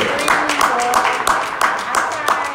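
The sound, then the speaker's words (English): Steady hand clapping, around eight sharp claps in a quick even rhythm, with some voice-like sound running faintly underneath. The clapping is for the heat wave that day. “Can we just clap for the heat wave we got today?”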